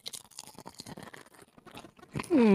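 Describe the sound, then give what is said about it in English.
Crisp crunching of a tortilla chip being chewed, a rapid run of brittle cracks for about two seconds, ending in a sudden loud voiced exclamation. “One more chip for the audience.”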